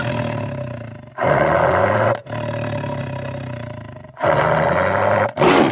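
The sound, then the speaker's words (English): A Siberian tiger roars in a series of long, loud, rumbling bursts, each broken by only a brief pause, with no voices present. “The Siberian tiger.”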